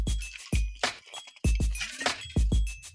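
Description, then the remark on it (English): Glass clinks and knocks in an irregular series of sharp taps as someone takes a sip of water, some taps followed by a thin, high ringing tone, with no voices. “I need a sip of water. Hang on.”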